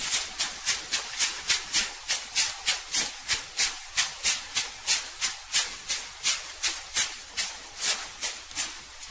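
Soft, airy butterfly wing flutters repeat in a steady rhythm, about two beats per second, clear with no voices.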